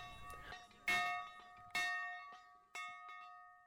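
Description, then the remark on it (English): A hand bell is rung in three separate strokes to signal groups to switch, each a bright metallic clang with a shimmering tone that rings on and fades before the next, with no voices present. “Anne rang the bell to signal the change.”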